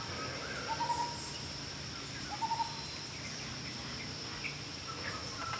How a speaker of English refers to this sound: I'm just going to be quiet for a second because I want you to hear the beautiful sounds of the jungle here in Bali.